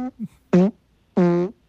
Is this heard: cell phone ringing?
no